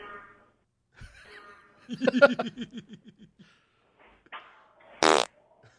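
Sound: farts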